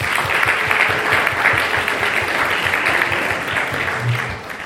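An audience claps steadily and loudly, a dense patter of many hands that holds at an even level for the whole stretch without tapering off.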